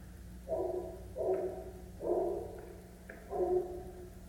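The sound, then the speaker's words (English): A dog barks four times in a steady, evenly spaced series. The barks are muffled and moderately loud, over a low background hum. “I'd definitely rather listen to woof, woof, woof.”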